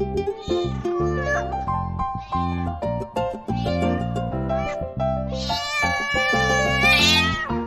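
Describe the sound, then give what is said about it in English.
A wet cat left in a box on a street meows repeatedly in drawn-out, pleading cries, fairly loud, the calls overlapping into a continuous wail that rises toward a shrill peak near the end. “Come here, kitty.”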